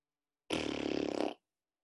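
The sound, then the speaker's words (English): A single loud, buzzy raspberry sound made with the mouth, imitating a fart, lasting under a second with a steady rattling pulse, isolated between silence. “And then he heard the last fart.”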